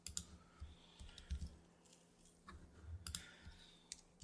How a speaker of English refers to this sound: Apologize, I'm gonna do some typing right now because I'm just sharing the live stream on my socials.